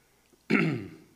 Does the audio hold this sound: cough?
yes